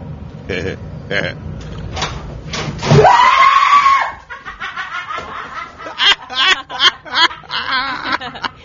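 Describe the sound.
A woman lets out a sudden, loud, high-pitched scream of fright at a snake in the bathroom, lasting about a second, preceded and followed by excited voices talking and laughing.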